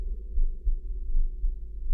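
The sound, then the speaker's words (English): A muffled, deep heartbeat thuds in a steady rhythm, a few low pulses over a couple of seconds, with a soft throbbing hum underneath and no voices. “fantastic terror never felt before, so that now, to still the beating of my heart, I stood repeating”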